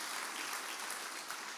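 A crowd applauding steadily, a dense, even wash of many hands clapping with no pauses and no voices on top, holding at a constant level throughout.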